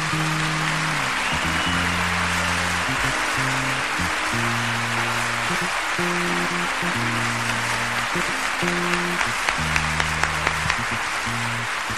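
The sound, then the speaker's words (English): Dense, sustained audience applause for the orchestra of the Olympia in Paris fills the whole stretch, loud, while a band keeps playing steady low bass notes beneath the clapping. “Avant de finir, je voudrais bien que vous fassiez un grand applaudissement pour la belle orchestre de l'Olympia de Paris, que c'est magnifique, s'il vous plaît.”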